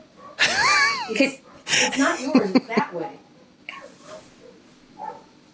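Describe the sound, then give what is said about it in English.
Dogs bark loudly in a couple of strong, yelping bursts, followed by a few fainter, more scattered barks that trail off. “Are those your dogs?”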